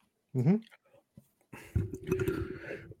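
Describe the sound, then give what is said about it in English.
A short voiced grunt, then after a pause a long, loud, croaky burp rumbling low and rough for about a second and a half. “I know everybody hates my burp”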